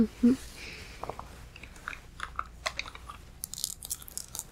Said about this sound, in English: and you look like you really need this, so why don't you take this burger and eat it up? You should finish it.